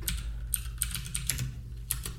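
Steady typing on a computer keyboard as someone looks something up, a run of crisp, irregular clicks over a low background hum, fairly quiet with no voices.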